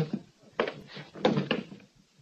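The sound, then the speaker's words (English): A wooden chair scrapes and knocks in a few short bursts as it is pulled up, then creaks as a man slumps down into it. No talking. “Rennie slumped down into the chair.”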